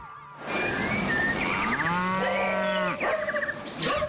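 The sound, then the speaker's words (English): Cows mooing loudly: a long, drawn-out moo with a rising then falling pitch, followed by a shorter second call, with no one speaking. “Cows, dogs, some exotic birds, horse.”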